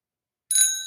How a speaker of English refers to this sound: That would be a bell, Nick. You should have said bicycle bell.